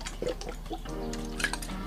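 Drinking water from a bottle in hot weather: a few soft gulps and sloshing liquid sounds over a couple of seconds, with a faint throaty tone partway through.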